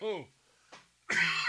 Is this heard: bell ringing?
no